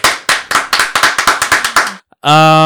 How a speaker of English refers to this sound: Sure, we got a round of applause.